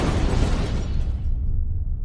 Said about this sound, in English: There had been a sound, like the world cracking open as the crown shattered in her hands.